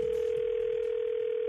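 A steady, unbroken telephone dial tone hums loudly and evenly as a phone call is started, a single flat pitch with faint background hiss and no voices.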